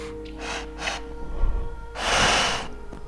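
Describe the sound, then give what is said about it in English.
A voice imitates a creature sniffing at someone: two short, quick sniffs, then a low rumble and one long, loud breathy snort or exhale, with no talking. “It looks at you, it sniffs.”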